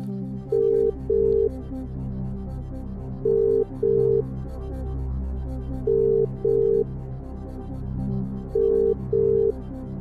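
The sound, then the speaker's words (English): An outgoing phone-a-friend call rings: four double-burst ringback tones repeat in a steady rhythm, clear and moderately loud, with a faint low hum underneath and no one talking. “I'm going to phone Ross Miller from the Xbox Party Chat podcast because I'm pretty sure he's a wrestling person.”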